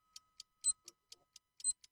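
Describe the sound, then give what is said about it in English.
A debate timer's buzzer goes off as a fast run of sharp electronic ticks, roughly four per second, a couple noticeably louder, clear with no one talking. “Again, I don't know what's going on with this buzzer.”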